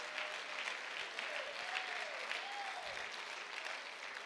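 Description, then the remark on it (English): A crowd claps steadily in a dense, continuous wash of applause as praise for Jesus Christ, with a few raised voices shouting and cheering over it, sustained and fairly loud throughout. “If you're grateful for the work of Jesus Christ in your life one more time, why don't you clap your hands and lift up a shout of praise?”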